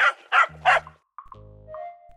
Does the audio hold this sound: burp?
no